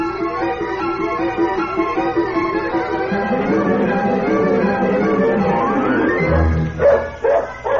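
dog barking and whining

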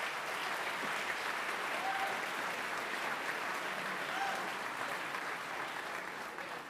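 applause

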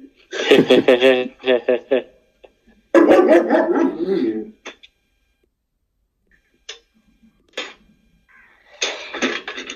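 dogs barking

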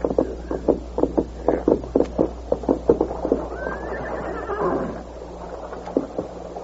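horses

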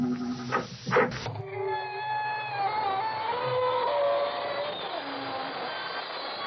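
creaking door opening

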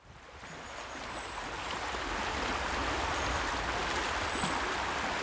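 flowing river water

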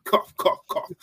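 cough

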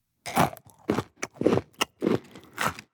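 chewing

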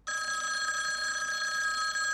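telephone ringing at night

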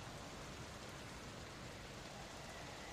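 rain falling

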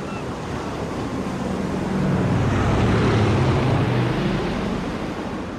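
ocean waves and wind

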